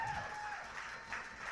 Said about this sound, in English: Can we give a big round of applause for Tracy, our scorekeeper? The most thankless job!